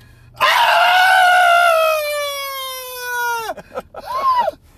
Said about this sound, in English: Ah! I gotta stop yelling.